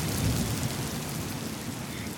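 Heavy rain pours steadily, a dense continuous hiss with a deep low rumble of thunder underneath, loud and unbroken throughout with no voices.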